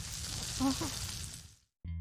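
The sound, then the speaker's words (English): A steady crackling hiss of bacon and eggs frying in a pan, with a brief murmur partway through; the sizzle cuts off abruptly into a moment of silence. “Listen to that sizzle.”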